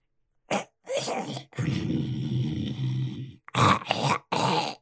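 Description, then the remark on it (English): A voice imitates a friar's rough, rattling, unhealthy-sounding snore: several ragged, gurgling breaths, one long drawn-out rasp in the middle, fairly loud with no other sounds. “As Marty hears this very unhealthy sounding snore, he makes a note to send somebody to check on Friar Pendleton”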